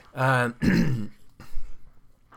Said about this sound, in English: Excuse me. Sorry, we don't have a cough button on this.